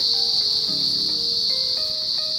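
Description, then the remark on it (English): A loud, unbroken chorus of about a million cicadas, emerging for their annual stay at Christmas in Orange, fills the air with a steady high-pitched drone, with a few faint lower tones underneath. No one speaks. “This is what passes for peace and quiet when a million cicadas emerge for their annual stay, all part of the colour of Christmas in Orange.”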